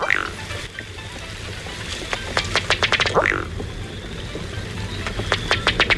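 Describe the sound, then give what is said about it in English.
A Ruddy Duck, a diving duck, gives its display call: a quick run of dry, tapping clicks that speed up and end in a low, belching burp, then another accelerating series of taps, fairly loud. “Crank it up, Mr. Ruddy Duck.”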